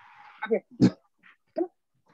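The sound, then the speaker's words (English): A large wolf-like dog lets out a few short, grumbling, almost talk-like vocal bursts, moderately loud, with brief pauses between them, upset at not being taken for its walk. “Do y'all see this wolf who was like, I didn't take him for his walk and he mad?”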